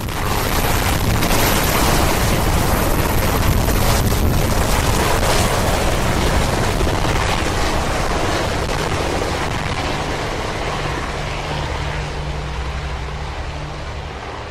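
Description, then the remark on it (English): A helicopter carrying the first family leaves the Capitol, roaring loudly with a heavy, rumbling low thrum and broad rushing noise, slowly fading a little as it departs. No one speaks. “Then, the first family leaves the Capitol by helicopter.”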